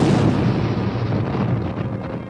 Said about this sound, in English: The Enterprise jumped to warp speed just as the Genesis device exploded. With a surge of power, the mighty starship left the explosion far behind.